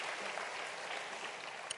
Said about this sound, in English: So thank you, St. Matthews. Give yourself a hand clap.